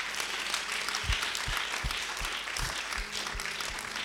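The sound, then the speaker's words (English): A crowd applauds steadily during a sermon, a dense wash of clapping that holds at an even level throughout, with deep low thumps beating roughly every half second beneath it. “Go ahead and clap.”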